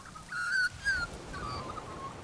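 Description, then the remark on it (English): A magpie in a gum tree calls in two drawn-out, whistled phrases, letting other birds know the tree belongs to him and his family, the first clear and bright, the second slightly softer and wavering, set against faint low background rumble with no talking. “There he goes again. Make no mistake, this is his gum tree.”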